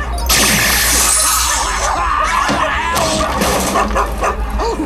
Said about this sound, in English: Ah, we've released the dogs.